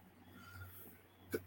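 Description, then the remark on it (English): A single short, sharp sneeze bursts out near the end, following a stretch of quiet hum with no talking. “But, oh my God, I'm about to sneeze.”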